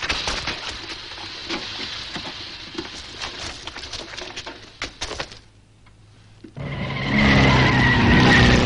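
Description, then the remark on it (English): Tyres skid and crunch over gravel with scattered clicks, then after a brief quiet lull the 1.5-litre engine of a small vintage Aston Martin race car roars up loud during a race. No voices. “This little Aston Martin, with only a 1.5-litre engine, puts up a brilliant show until Count Zborowski runs into Magneto trouble.”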